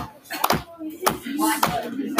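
A few sharp hand claps land at uneven intervals, several hands striking roughly together, with faint voices murmuring underneath between the hits.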